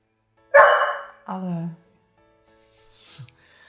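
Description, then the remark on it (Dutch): A dog barks twice, a sharp bark followed by a lower, drawn-out woof, then a softer whiny vocalization trails off after a pause. “Als we nu 2 minuten even dat geblaf doorstaan.”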